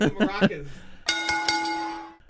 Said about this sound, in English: JR goes cha cha cha, and then that means ding ding ding, ring the bell, ring the bell.